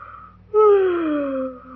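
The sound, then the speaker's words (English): A single long, voiced yawn sliding slowly downward in pitch, fairly loud, trailing off after about a second with no talking around it. “Will you please stop yawning? It frightens me.”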